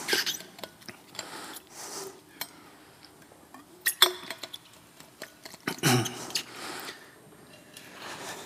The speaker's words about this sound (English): I'm just going to take a sip of water, so give me a second.